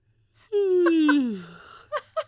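A person gives one long, loud, drawn-out yawn, its voiced tone sliding downward before trailing off, then two short breathy vocal sounds follow.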